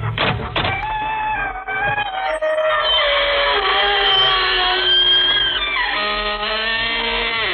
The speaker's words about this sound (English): Good evening, friends. This is your host to welcome you through the creaking door into the inner sanctum. Come on in.